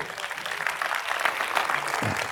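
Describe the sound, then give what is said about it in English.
An audience claps their hands to the Lord during a church sermon, a dense, steady wash of many overlapping claps, fairly loud throughout with no clear beat, and no voices standing out. “Come on, somebody clap their hands to the Lord.”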